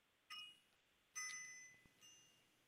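A bell rings three times with bright, sustained metallic tones that ring out and slowly fade, the middle strike loudest, heard alone without any talking.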